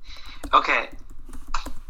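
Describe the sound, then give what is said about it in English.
Typing on a computer keyboard: a few irregular key clicks, including a short dense burst of taps, over a low background hum. “Hold on, I'm typing.”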